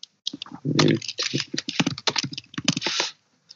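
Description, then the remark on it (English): Rapid, forceful typing on a computer keyboard as someone does a Google search, a dense run of loud keystrokes clattering for about three seconds before stopping, with one last tap near the end. “He's typing hard there.”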